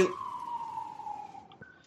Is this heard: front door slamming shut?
no